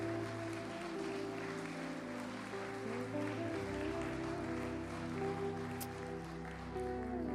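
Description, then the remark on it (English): An audience claps their hands in praise to Jesus in a steady, dense wash of applause that lasts throughout, with sustained organ or keyboard chords playing underneath. “Come on, let's give Jesus a hand clap of praise.”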